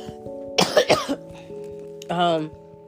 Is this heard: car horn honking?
no